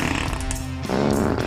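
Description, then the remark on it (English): A loud, wet fart sound effect stretches for about a second and a half, buzzy and sputtering with a rough shift partway through, heard alone without any talking. “They have a 39-year-old quarterback and the NFL's toughest schedule, not to mention an offensive line that is sketchier than a wet fart.”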